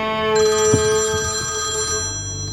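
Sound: phone ringing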